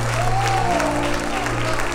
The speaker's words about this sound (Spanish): Aleluya. Dale un aplauso al Padre. Dale un aplauso al Hijo. Y dale un aplauso al Espíritu Santo.